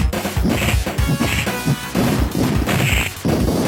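Rapid, punchy video game hit effects from the Genesis version of a game land in quick succession, each a loud, crunchy thwack with a bright zing on top, repeating in bursts over a few seconds.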